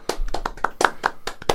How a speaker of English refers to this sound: Round of applause.